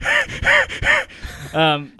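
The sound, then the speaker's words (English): A person imitates a horror game creature with heavy, raspy breathing: three loud, rhythmic gasping breaths, followed by a short, throaty voiced groan, with no talking over it. “Do you hear that breathing? Oh, there it is again.”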